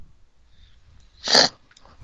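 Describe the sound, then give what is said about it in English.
A single short, sharp sneeze bursts out into the microphone, loud against an otherwise quiet background, with only faint low rumble before and after. “I'm trying to not like sneeze and cough on this fucking microphone.”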